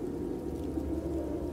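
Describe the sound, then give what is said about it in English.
Steady, dense storm rain with a deep rumbling undertone holds at an even level throughout, with no distinct thunderclap and no voices. “I said, and we went ahead with our plan to brave the storm and head for Building B.”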